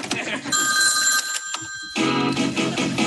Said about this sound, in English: Hey, I got another call coming in. I gotta let the machine get it.